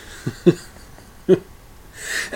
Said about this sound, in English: Oh, excuse me, I got a little cough. Dry throat, let me have a sip. Coughed on the joke.